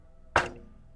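A single knock on a cabin door: one dull, solid thud that fades quickly, with faint low hum and otherwise quiet before and after. No one speaks.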